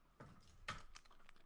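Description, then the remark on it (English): Someone fiddles with a pair of sunglasses on a glasses chain around their neck, making a couple of small plastic clicks and faint rattling taps. It's quiet, with no talking. “It sounds like you're fiddling with sunglasses to either take them off or to straighten them on your face.”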